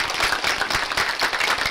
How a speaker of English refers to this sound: And let's also, as we give you guys these books, congratulations. We love giving these out. You can clap. It's okay.